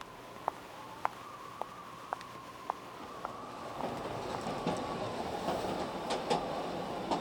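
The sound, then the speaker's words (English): A train runs along the rails, a steady hum broken by regular clacks about twice a second, then swelling into a louder, rougher rumble as it carries on. No voices. “Entering the beverage car on the train”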